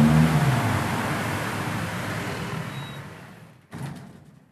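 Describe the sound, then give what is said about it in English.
Barcelona city street traffic: a steady roar of cars with a low engine drone that falls in pitch and fades, then a brief burst of noise near the end. No one speaks. “ID vehicles exceeding noise limits, like delivery trucks or motorcycles. In the meantime, though, the noise drones on”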